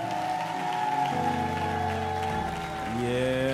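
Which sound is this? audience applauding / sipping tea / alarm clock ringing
audience applauding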